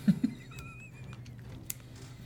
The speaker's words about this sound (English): it's going to take 7d6, which I am going to roll presently